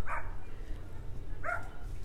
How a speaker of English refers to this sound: Okay, dog, damn. Why did you have to come here? Are you barking at me?